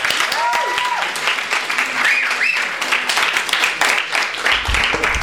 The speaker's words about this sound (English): Okay, let's please give a warm round of applause to Daniel Alarcón.